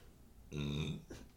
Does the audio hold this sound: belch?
yes